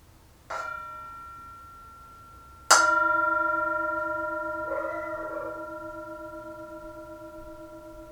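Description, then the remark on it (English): A Tibetan singing bowl is struck twice, a soft tap and then a firmer strike, each leaving a long, shimmering ring that slowly fades, with a gentle wavering swell partway through. No one speaks. “As usual, we have the Tibetan singing bowl, the bell, and you are invited to enjoy the sound of the bell.”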